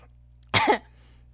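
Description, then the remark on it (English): A single short, throaty cough bursts out, followed by a brief pause and the start of another harsh cough at the very end; no talking. “I missed your cough.”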